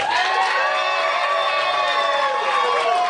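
A large audience cheers loudly and without a break, applauding to vote a band the winner of the finals, many high voices screaming and whooping together in a dense, sustained roar that fills the whole few seconds.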